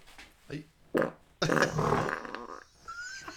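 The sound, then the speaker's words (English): A loud, rumbling fart blasts for about a second, preceded by a couple of short grunting bursts and followed by a faint voice. “That fart was brought to that you That was by, almost an expensive fart.”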